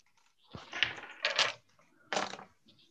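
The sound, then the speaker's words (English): Large dice clatter and tumble across a tabletop in a few loud, rattling bursts, each roll scattering into quick clicks before settling, with no voices. “So go ahead and roll. Perfect. Well, these dice are just like too big.”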